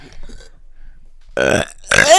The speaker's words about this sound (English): I gotta rebuild my burp. That tasted like Lindor chocolate.